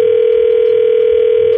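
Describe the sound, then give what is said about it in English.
A steady electronic ringback tone hums over a telephone line, one unbroken buzz of an outgoing call ringing, fairly loud and alone with no voices. “Okay, well, let's why don't we try, and let's see if we can get him on the phone to answer some questions when we come back next.”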